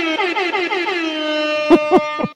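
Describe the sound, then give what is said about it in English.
A loud hip hop air horn blares in rapid stuttering bursts, holds a long sustained blast, then ends with three sharp punchy hits, heard alone without any talking. “So hip hop air horn for the police.”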